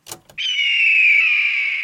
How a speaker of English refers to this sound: That was a red-tailed hawk. The red-tailed hawk's most well-known call is a loud, raspy scream or screech. In movies or TV shows, this call is often used to represent an eagle sound, which is why you may have accidentally picked this as your answer.